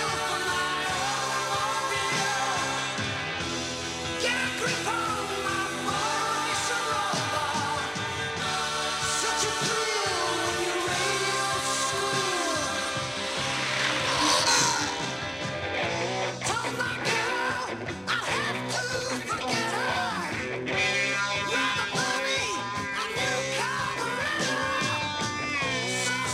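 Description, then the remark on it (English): A loud, dense rock song plays continuously with driving drums, heavy guitars and strained vocals, swelling into a brief roaring burst near the middle, with a revving car engine. “… That's the song.”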